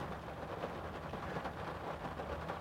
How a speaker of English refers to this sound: As you can hear, it's raining out